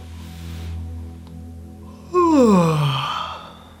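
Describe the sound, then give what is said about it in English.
A single deliberately faked big yawn from one person, done as a calming exercise. It rises with a breathy onset and then slides down in pitch into a long, groaning exhale, fairly loud after a quiet, low hum. “try faking a big yawn.”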